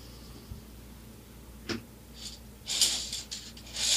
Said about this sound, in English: Can you hear that? That's the cicada, foreigner.